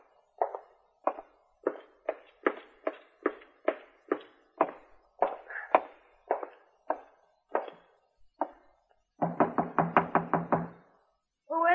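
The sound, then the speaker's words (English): A long run of steady, firm knocks on Teal Travis's door at the end of the upstairs hall above a bar, clear, about two per second, followed by a short burst of muffled, voice-like sound near the end. “Open the door, Teal.”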